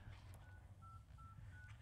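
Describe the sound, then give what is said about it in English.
A short series of telephone dialing tones, four steady beeps in quick succession, sounding over a low hum of line noise, as a phone line is being tested. “here's the phone line lighting up. Oh, that's John doing it. Okay. Never mind. We're still making sure the phone line works.”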